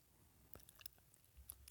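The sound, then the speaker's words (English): Chewing of food, a quiet run of irregular wet clicks and soft crunches right at the microphone, with no talking over it. “How about you chew your food before you come to the microphone?”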